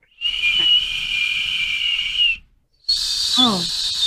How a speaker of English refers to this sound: Oh, I want to try to harmonize with the whistles.